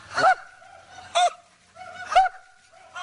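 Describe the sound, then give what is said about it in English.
People squawk in imitation of seagulls, letting out four sharp, nasal honking cries at roughly even intervals, fairly loud, with no talking in between. “This is ridiculous. Sounds like seagulls.”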